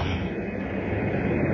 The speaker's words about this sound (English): plane is flying through the skies. I really think these planes is haters. I really think they hate me.